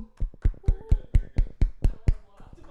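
A short burst of applause: about ten sharp, evenly spaced claps in a quick steady rhythm, with a faint voice murmuring underneath before the clapping trails off.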